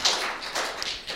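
An audience applauds with a steady wash of many overlapping claps, fairly even in loudness throughout the short burst, with no voices heard.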